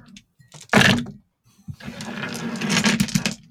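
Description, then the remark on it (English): A sharp clattering burst, then a brief pause before a longer, busy rattle of many small hard dice tumbling and spilling out of a box as an entire dice kit is dumped after its lid falls off while being rattled, loud and continuous to the end. “I don't know why I decided to dump my entire dice kit.”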